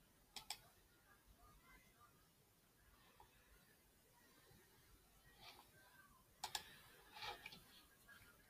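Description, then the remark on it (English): Quiet computer keyboard keys clicking in small scattered bursts, a couple of taps early on and a cluster of quick clicks near the end, over a faint background hum. “You know, guys, I used to have this cool little sleek keyboard that was like thin and you wouldn't get the noise on it.”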